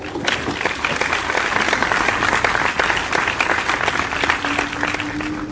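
A crowd applauds steadily for several seconds, a dense, even wash of clapping hands with scattered sharper claps standing out, holding at a fairly loud level throughout.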